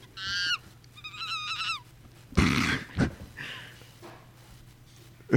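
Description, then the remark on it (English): Monkeys calling loudly, with a run of shrill, wavering hoots followed by harsher, noisy shrieks and bursts, prominent, with no one talking. “Monkeys are getting loud.”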